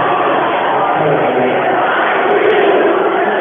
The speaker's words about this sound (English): Crowd is starting the I believe that we will win chant.